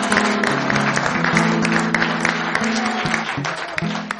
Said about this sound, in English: Come on, somebody just give Jesus a big hand clap.